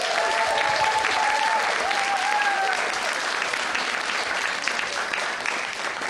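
An audience applauds a speaker steadily for about six seconds, a dense, even patter of many hands clapping at a constant loud level, with a few faint whoops or cheers rising above it early on.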